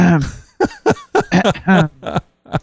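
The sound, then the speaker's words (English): A run of rough, voiced throat-clearing noises, fairly loud, coming in several short bursts with brief pauses between them. “You need to clear your throat, young lady.”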